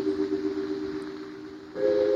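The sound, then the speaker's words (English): A train goes by, sounding a steady, droning horn chord over a rumbling background on a hot, dry afternoon; near the end the tone jumps higher and grows louder. No one speaks. “I managed to back up when the train passed.”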